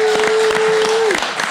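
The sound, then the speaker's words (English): Loud, dense applause from an audience for Home Alone 2 on the Range, continuous clapping filling the whole moment, with a steady held tone underneath that slides downward near the end. “Let's hear it for Home Alone 2 on the Range. It deserves applause.”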